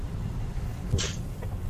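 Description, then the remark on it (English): A single quick sneeze bursts out as a sharp, hissy blast, then fades almost at once over a steady low rumble that runs through the whole moment. “Bless you.”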